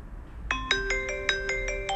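A 30-second timer alarm for a Q&A session plays a quick, steady run of bright electronic tones, about eight ringing notes that overlap like a chime melody, sounding clearly over a faint low hum.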